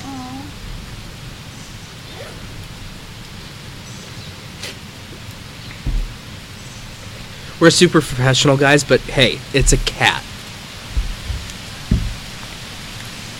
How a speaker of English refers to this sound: Yeah, you can probably hear the rain now.